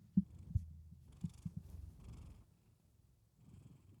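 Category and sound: animal, cat purring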